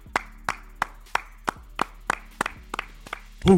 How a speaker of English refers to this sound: Clap it up.